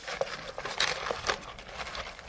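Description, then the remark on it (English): Glow sticks being shoved into a polystyrene bucket of ice with added salt and some water until fully submerged: gritty crunching and clattering, with a few sharper bursts among steady scraping, all fairly quiet and without any voices. “jam their glow sticks into the ice, so they're completely submerged there”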